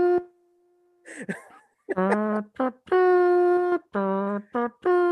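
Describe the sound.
Someone plays a 'nose trumpet', a nasal, buzzy imitation of a trumpet playing taps: a held note, a brief snort, then a slow series of sustained tones, short and long, with small pauses between.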